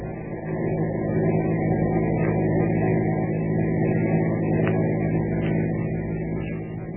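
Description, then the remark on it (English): A car engine hums steadily at cruising speed while following a truck, a constant low drone with road rumble filling the whole stretch, fairly loud with no talking. “Keep on the tail of that truck.”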